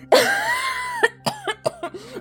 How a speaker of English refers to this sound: She exploded into coughing again, splattering the floor with red.